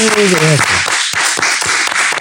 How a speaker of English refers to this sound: Okay. All right. Well, can we clap that up? That was a good answer.